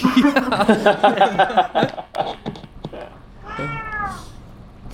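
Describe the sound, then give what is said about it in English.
A cat lets out a loud, drawn-out yowl, wavering and crowing in pitch like a rooster call, followed after a short pause by a softer, rising meow. “Cats just yell at the sunrise here instead of roosters.”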